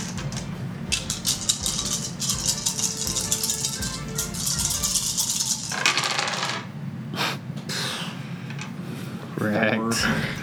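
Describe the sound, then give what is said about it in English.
Dice clatter across a hard tabletop in a dense, rapid run of sharp clicks for several seconds, then settle into a few scattered taps, with murmuring voices underneath. “Man, if you had only rolled a little better, he rolled a 5.”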